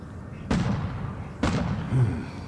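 Two booming fireworks bursts about a second apart, each a sharp loud crack trailing into a rumbling, crackling decay against a low background hum.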